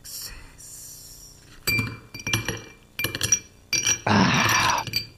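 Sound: glasses clinking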